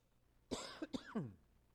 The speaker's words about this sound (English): Apologize for my cough.